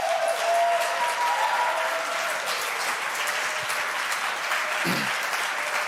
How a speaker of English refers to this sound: Can you give him a cheer?